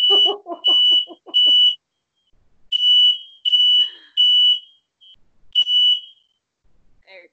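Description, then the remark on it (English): A loud home smoke detector alarm goes off while someone cooks downstairs. It sounds in repeated piercing beeps, three quick blasts, a pause, then another set, with brief voices and laughter overlapping the first beeps. “I got a smoke detector in my bedroom, just like you're supposed to”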